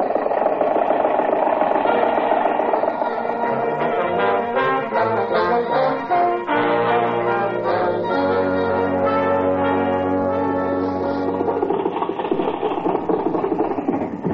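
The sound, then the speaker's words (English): An early motor car engine runs loudly and steadily for the whole stretch, a droning, buzzing rumble whose tones waver and shift pitch, with no voices over it. “Confound your stinking motor car.”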